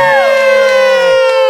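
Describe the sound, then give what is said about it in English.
A loud, sustained studio cheer of voices welcoming a guest, holding a drawn-out high whoop, the pitch sliding downward and then leveling off for about a second and a half, with no clear words. “Normally we warn people that we cheer because some people would get excited, get scared.”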